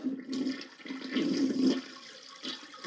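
A toilet flushes with a rushing, gurgling swirl of water that surges, peaks and then drains away, with no talking.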